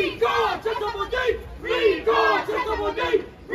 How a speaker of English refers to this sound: Those are the chants of recall activists yelling at Boudin as he leaves a business in San Francisco's Chinatown back in April.